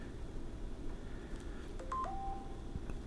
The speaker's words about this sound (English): What the hell kind of noise was that? The notification email.